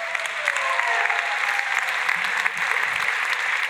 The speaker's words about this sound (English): Let's clap for Brian.